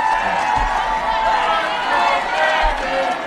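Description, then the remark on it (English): A large crowd chanting together, many voices blending into a loud, continuous roar with a steady sung rhythm, filling the whole moment without pause. “We're listening to the crowd.”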